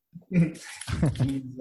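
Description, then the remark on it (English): A dog named Jack vocalizes in the room, a short run of whiny, yelping sounds lasting under two seconds, fairly loud and rising and falling in pitch. “What's your dog's name, by the way”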